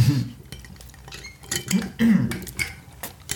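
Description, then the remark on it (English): Glasses of straight vodka clink together in a toast, a few bright knocks in quick succession amid faint rattling of tableware, with low murmuring in the background. “you want in on this cheers, bro? Pinky up, bro.”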